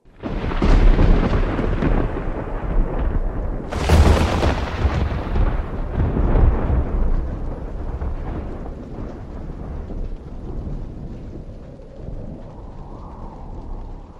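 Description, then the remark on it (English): Deep rolling thunder rumbles continuously in a heavy snowstorm with lightning, with a sharp loud crack about four seconds in, then slowly fading into a low growl. No voices are present. “The snow was falling thick as an avalanche, whilst above it, thunder and lightning rumbled and flashed.”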